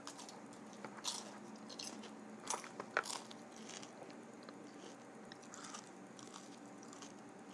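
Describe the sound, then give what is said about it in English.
Crunchy food is bitten and chewed, with repeated crisp bursts scattered irregularly over a low steady background hum, no talking. “Some people like to hear the crunches.”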